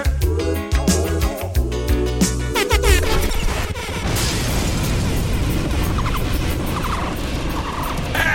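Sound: explosion sound effect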